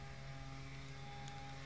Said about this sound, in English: And I hope you guys don't hear the lawnmower outside because it's really annoying me.